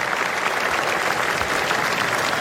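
A crowd applauds Pro Football Hall of Fame members on stage, a dense wash of many hands clapping at a loud, even level with no pauses and no talking over it.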